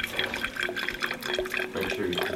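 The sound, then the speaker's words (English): A steady trickle of vinegar pouring into a small salad dressing cruet with measurement lines on it, with a continuous splashing gurgle and a slight rising tone as it fills, moderately quiet. “So, you just need a little bit of vinegar.”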